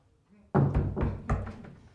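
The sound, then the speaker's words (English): Knocking on wood for luck: four solid raps in a quick, slightly uneven rhythm, each with a short resonant thud. No talking. “Fingers crossed. All right. Knock on wood.”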